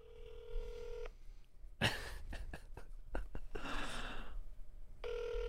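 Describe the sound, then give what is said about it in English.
A steady ringing tone, then a quick run of telephone keypad beeps and clicks, a breathy sigh, and the ringing tone starting again, as a number from a contact page is called again to leave a voicemail. Clear, with no talking. “We're calling it again. I'm leaving the voicemail.”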